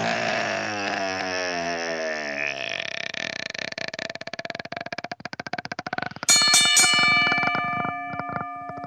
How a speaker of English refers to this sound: Ring the bell!